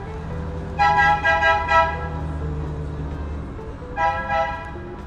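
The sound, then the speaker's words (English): A coffee truck's horn honks outside in a quick run of four or five toots, pauses, then sounds again briefly, all over a low idling engine rumble. “That's the truck, the coffee truck.”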